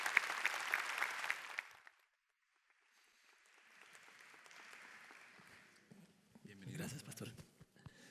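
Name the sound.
audience applause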